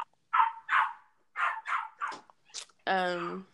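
A dog barks in quick bursts, two barks, a pause, then several more, ending with a sharp high yip and a drawn-out whining cry.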